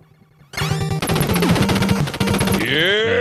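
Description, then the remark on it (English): The spray gun in the retro video game Contra firing in a rapid, continuous burst of crunchy electronic shots with a chiptune melody underneath, ending in a rising synthetic whoosh. No voices. “The spray was the best gun on Contra.”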